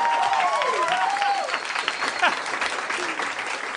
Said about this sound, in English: Like, he gets applause for his his DM solo.